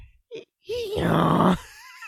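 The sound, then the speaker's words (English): A person imitates a donkey's bray: a short vocal blip, then a wavering voiced cry that swells into a loud, harsh, raspy honk lasting about a second before cutting off. “Give me an awful sound.”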